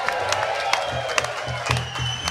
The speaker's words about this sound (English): Fucking round of applause for the boys.